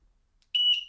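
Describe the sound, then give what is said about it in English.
A sudden, piercing high-pitched whistle tone from a horn device, sounded at 10:30 in the morning in an apartment complex, starts after a brief silence and holds steady and loud for the rest of the short clip, with faint harmonic overtones. “Oh, it's a whistle?”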